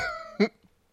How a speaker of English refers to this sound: Slap it again.